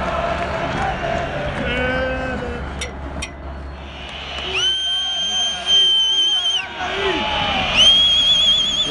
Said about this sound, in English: Is the crowd going berserk because Real Madrid have got the ball. Pretty intimidating for an away side. When you say they have the ball, they're just kicking off. There we go. Atmosphere absolutely unbelievable.